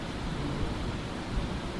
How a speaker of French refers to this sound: Alors, qu'est-ce qui se passe? Moi, je vais mettre des mots, mais en fait, il n'y a pas besoin d'en avoir. Qu'est-ce qui se passe? Ventilation.